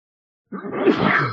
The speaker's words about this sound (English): I feel bad. It sucks to have a sneezing attack like that. It's terrible.